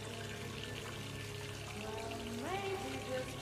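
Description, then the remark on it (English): Bathwater runs steadily into a tub, a continuous rushing pour at moderate volume, with a soft tonal hum sliding upward in pitch near the end. “I heard her draw the water and then began singing softly to herself as she dipped into the water.”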